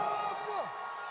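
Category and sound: crowd, crowd cheering and whooping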